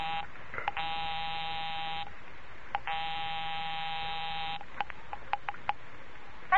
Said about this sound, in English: I'll give 9B a ring first on the house phone.